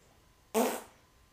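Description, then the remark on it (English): A single short, loud fart, bursting out abruptly and trailing off within about half a second against a quiet background. “It passed the fart test.”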